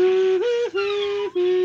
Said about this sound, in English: Now he's whistling. … is in a very magical, or very musical mood tonight.